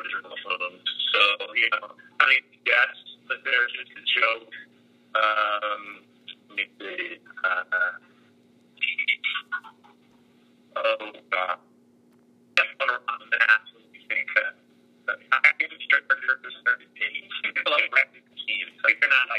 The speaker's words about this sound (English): Yeah, your phone's cutting out.